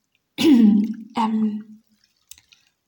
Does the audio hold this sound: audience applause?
no